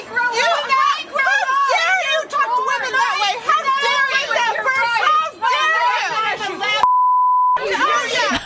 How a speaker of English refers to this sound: I was getting ready to say, there's not even profanity. And then you hear the beep.